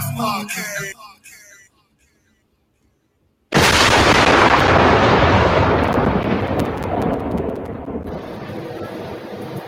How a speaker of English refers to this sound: Y'all hate them lightning bolts.